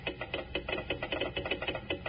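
A telegraph key taps out Morse code as a fast string of sharp clicks, about five per second in an uneven stop-start rhythm, fairly loud with no voices.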